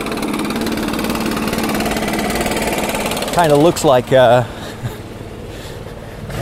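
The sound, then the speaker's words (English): A backpack leaf blower used by city workers to blow fallen leaves to the sides drones steadily outdoors, its small engine roaring at a constant pitch throughout, while a person speaks briefly over the noise partway through. “It's so noisy. I wonder why they have it. It looks like a jetpack. I guess if the guy points the leaf blower to the ground, he'll probably lift up.”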